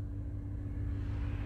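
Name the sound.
road traffic passing by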